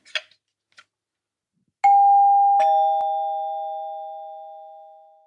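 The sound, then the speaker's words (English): An electric two-tone doorbell chime rings once: a higher ding followed by a lower dong, both tones ringing out and slowly fading. A few faint clicks come just before. “The demise of the door chime was in the 1950s”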